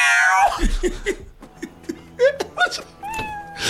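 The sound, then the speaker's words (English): A loud, drawn-out cat yowl, dubbed into a film scene of a cat eating, opens sliding downward in pitch, then shorter wavering cat cries follow amid murmuring voices and a bit of laughter, ending on another sustained yowl. “that cat was loud as fuck”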